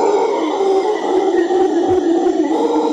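A continuous, droning roar of howler monkeys, deep and rumbling, holding steady and loud for a few seconds like a chorus, with no talking.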